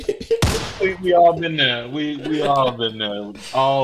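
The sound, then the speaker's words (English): A single sharp gunshot sound effect, played by accident, cracks loudly near the start, then decays quickly as voices continue over and after it. “That was an inadvertent gunshot.”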